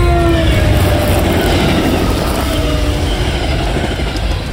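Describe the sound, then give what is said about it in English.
A black train with passengers roars past as it emerges from a narrow tunnel, a loud, steady rumble of rushing wheels with faint metallic squealing tones riding over it for the whole stretch, no voices. “A Vanta Black train instantly emerged from the tunnel.”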